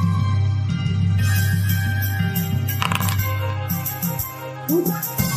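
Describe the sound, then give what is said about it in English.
A single die clatters and rattles across a hard surface in a short burst of sharp clicks, over a steady low background hum. “One dice. 23 to hit for 19.”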